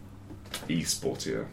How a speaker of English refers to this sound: I couldn't hear over the creaking of your chair.